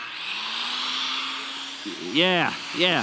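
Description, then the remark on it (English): A power saw hums steadily, then revs up twice in quick succession, each burst whining upward in pitch and dropping back down, loud over a constant background hiss. “We got a power saw. Come on, rev that baby up.”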